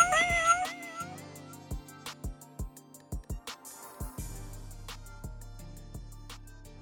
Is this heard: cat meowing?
yes